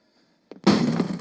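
In a movie clip, after a moment of quiet, a sharp thump gives way to a loud, rough crash that keeps rattling and clattering as Jake busts a door open and smashes in.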